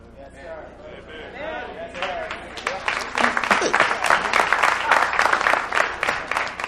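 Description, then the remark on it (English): A voice speaks briefly, then an audience breaks into clapping that quickly swells into steady, dense applause lasting several seconds, fairly loud. “Your claps did not change this next bullet.”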